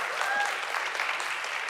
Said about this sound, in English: Let's give Nina a round of applause for being here.